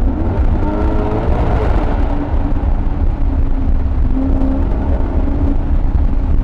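A car engine in sport mode hums steadily with a deep, constant rumble, overlaid by a broad rush of wind buffeting through open windows, loud throughout with no talking.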